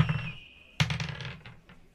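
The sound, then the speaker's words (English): Dice clatter across a tabletop for a deception check rolled with advantage in a tabletop role-playing game, landing on 8: an initial rattle followed by a sharp impact and a series of quick, diminishing bounces and clicks as they tumble to a stop. “That dice is cursed.”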